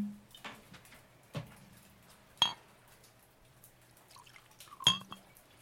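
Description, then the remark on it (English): Whiskey being poured into a glass, with a few sharp clinks and small splashes spaced over several seconds and a faint low hum underneath. No one speaks. “If you want to know more about the cave, you have to give me more whiskey.”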